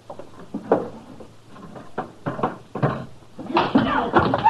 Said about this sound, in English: What will I do with their guns, Mr. Dillon? Throw them in a drawer, Chester.